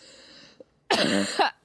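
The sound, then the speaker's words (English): A single loud, harsh cough right up close to the microphone, about half a second long, following a brief quiet breath and a small click. “I should probably cough away from the mic.”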